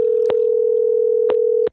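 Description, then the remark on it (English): A steady, unbroken telephone tone hums for nearly two seconds, like a ringback on an unanswered call to an old friend, with a few faint clicks on the line before it cuts off abruptly. No one speaks. “She ain't picking up the phone.”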